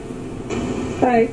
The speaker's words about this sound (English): It's a lot of white noise. I think it's because it's rainy background, so the rainy in the environment today.